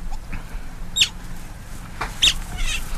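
An egg hatching: two brief, sharp high-pitched peeps or cracks about a second apart, with fainter scratchy rustling in between, fairly quiet and with no voices.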